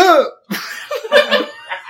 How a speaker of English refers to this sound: Still got the hiccups.